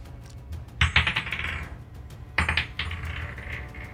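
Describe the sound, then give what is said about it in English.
Two eight-sided dice (2d8) clatter across a hard tabletop in two separate rolls for a damage roll in a tabletop game, each a quick burst of bright rattling clicks that tumbles and settles, over a low steady hum with no talking. “Ooh, I rolled 5 three times in a row there.”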